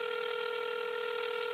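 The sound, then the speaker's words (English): A steady electronic touch-tone phone sound holds evenly for under two seconds as a cell phone number is dialed, clear, with no voices or other noises around it. “Sometimes I would just call his cell phone just to hear his voice.”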